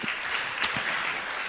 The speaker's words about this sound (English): Now, because you all followed along, give yourselves a big round of applause just for doing that.